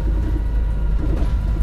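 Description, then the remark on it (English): A steady, deep engine rumble and road drone heard from inside a moving bus, continuous and fairly loud with no voices. “I miss doing these little virtual bus rides.”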